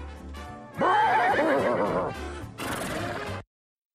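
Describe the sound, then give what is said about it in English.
A dog lets out a loud, quavering whinny, pretending to be a horse: one long wavering cry followed by a shorter, breathier burst that cuts off abruptly, with no talking. “should never make that noise again. And it pretends to be a horse.”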